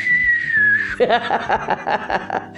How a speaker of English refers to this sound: why am I whistling there? That was hilarious.